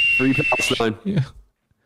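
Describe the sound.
A steady, shrill whistle tone holds for under a second, loud, while a voice talks over and beneath it; the talking carries on briefly after the whistle stops.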